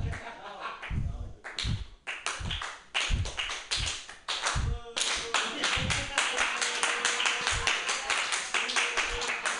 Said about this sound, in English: Let it build to a slow clap.